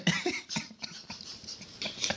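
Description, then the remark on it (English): A series of short, harsh coughs comes in quick bursts, several of them spread unevenly across a couple of seconds, moderately loud, with no talking. “I don't even trust you. You've been coughing since.”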